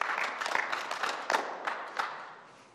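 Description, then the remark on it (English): Scattered clapping from a group, a steady patter of hand claps with a few sharper ones standing out, fading gradually over a few seconds with no voices. “It's okay to clap.”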